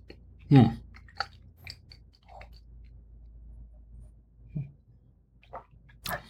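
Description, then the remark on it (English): Crunchy chewing on a firm piece of white cheddar with Parmesan cheese, with a loud first bite followed by a few scattered crisp crunches and quieter mouth sounds in between. “Let me try another piece of this. This is kind of looks like it. Yeah, a little bit. Okay. But a little crunchy now.”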